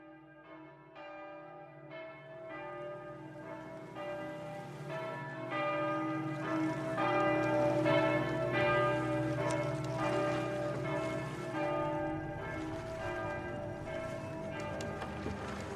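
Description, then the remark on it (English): A church bell tolls steadily far across a city, its strikes coming roughly once a second, with rich ringing overtones overlapping and hanging in the air. The sound is soft and far away, with no voices. “Far across the city, a bell began to toll.”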